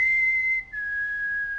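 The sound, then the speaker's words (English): A clear two-note human whistle, used as a signal while children play hide and seek on a farm: a steady held tone, a brief break, then a second slightly lower note sustained longer. Loud and alone, with no talking. “regularly play hide and seek, and they have this like unique whistle they'll do during the game.”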